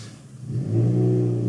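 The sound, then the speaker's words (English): A car engine revs up, rising from a low rumble to a loud, steady roar with strong harmonic tones over about a second and a half, no voices present. “Well, that car said it's time for a break.”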